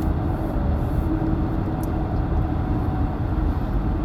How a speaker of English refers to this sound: And I'm stuck behind a FedEx truck, going slow. Okay, I ain't in a hurry.